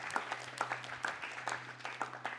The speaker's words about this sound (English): Can we give God a clap of praise for how amazing he is?